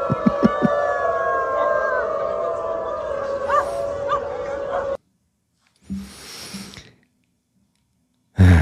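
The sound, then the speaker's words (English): Several people who pretend to be dogs imitate dogs howling, long wavering tones layered together with a few yelps, loud for about five seconds, followed by a brief burst of noise and silence. “Is there a canine being park somewhere where these people can go play together and pretend to be dogs?”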